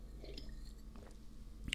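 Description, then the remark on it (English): Someone takes a swig of water: faint, soft wet gulping and mouth sounds, ending in a brief, sharply louder burst. No one speaks. “And I look back at it and go, gee whiz, I'm taking another swig of water here.”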